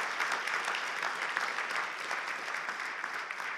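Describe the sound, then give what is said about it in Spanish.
A church audience claps steadily during a service, a dense, continuous patter of many hands sustained at an even level throughout, with no voices standing out. “Dar un aplauso fuerte, Señor.”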